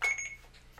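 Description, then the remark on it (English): A single short electronic beep from a recording device, a thin high tone that fades quickly into quiet with no one speaking. “So I have to do it and it'll beep and then I say suck my split and then I click it again?”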